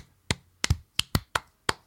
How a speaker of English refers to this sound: So that concludes Harry Potter. We got to clap